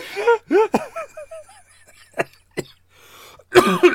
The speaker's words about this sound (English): excuse me, it's just a little cough.